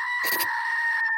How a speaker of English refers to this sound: Okay, so I now have the Greek screaming goat we can use whenever there's a grammatical error.